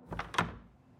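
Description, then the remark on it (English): A performers-only door behind a stage opens and shuts: two quick wooden knocks a moment apart, the second heavier, then a short fading echo. No one speaks. “He managed to pull himself away from the crowd and linked his arm with mine, and we walked back behind the stage and out a special door that was only for performers.”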